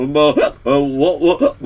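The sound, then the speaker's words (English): A string of loud, voiced burps, several in a row with short breaks between them. Each one is drawn out and wavering in pitch, almost vocal in tone. “I just need a little wine to stop the burping, excuse me.”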